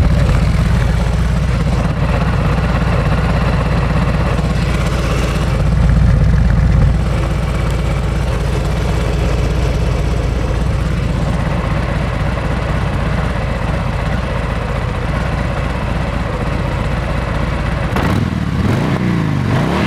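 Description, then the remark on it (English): A Harley-Davidson FX-DR motorcycle with a massive rear tyre rumbles steadily while being ridden on the Wainui Mata Hill on a stunning day, with a brief surge in revs partway through and a shift in engine note near the end, amid constant wind rush. “And we're on the Harley Davidson FX-DR.”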